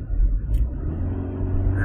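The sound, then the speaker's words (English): A person driving a car imitates a car engine with a low, steady, rumbling vroom that holds for about two seconds, fairly loud, with no words spoken. “I'm just driving my car and making vroom vroom noises now.”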